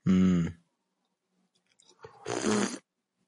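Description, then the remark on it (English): Two loud, brief slurps of percolator coffee from a mug, separated by a quiet pause, each a noisy, airy sucking sound with a hummed, voiced tone mixed in and no talking. “And yes, I did just slurp it to just really coat my entire tongue.”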